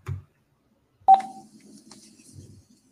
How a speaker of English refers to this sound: So that was one of the phone calls. I think this is the next one. Again, you can hear a pressing record on the little recording device as well as answering the phone.